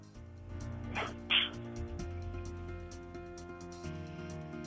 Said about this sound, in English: Bless you.